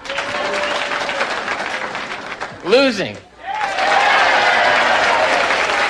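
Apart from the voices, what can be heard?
audience applause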